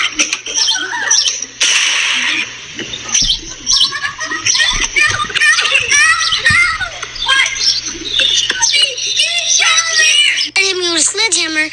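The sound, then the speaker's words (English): Children shout, squeal and chatter while playing outdoors on Candlewood Lane on a Saturday afternoon, their high-pitched voices overlapping throughout, with a sudden sharp, loud gunshot, fired from inside a house and hitting a boy, breaking in near the start. “You'll see kids playing, hear a gunshot,”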